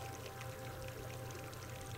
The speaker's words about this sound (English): A little mock waterfall, dripping peacefully.